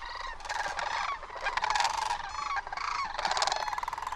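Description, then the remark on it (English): A flock of thousands of cranes trumpeting as they fly overhead above a meadow, many rolling, bugling calls overlapping in a dense, continuous chorus that swells and dips over a few seconds, with no one speaking. “It's a hoarse croaking sound, nothing at all like these trumpeting cranes.”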